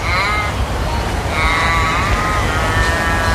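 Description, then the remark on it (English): An Australian crow gives a series of long, drawn-out, wailing caws, three nasal calls in close succession that sag in pitch at the ends, loud and with no one talking. “That's literally what all the crows in Australia sound like.”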